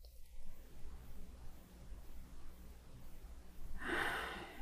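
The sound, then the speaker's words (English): A single slow, airy breath rises near the end after several seconds of quiet room hum, soft, with no talking. “As I continue breathing and just landing in this room, in this place, at this time, being able to give our full attention to this episode or this moment”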